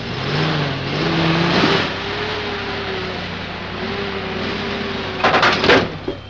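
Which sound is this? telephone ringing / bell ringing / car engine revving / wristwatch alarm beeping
car engine revving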